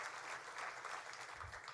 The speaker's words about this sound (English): How about another round of applause for Greg Hayes, the chairman and CEO of United Technologies. It is great to have him in the Hoosier State.